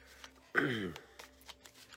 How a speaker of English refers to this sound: Card number 3. I'm going to shuffle here.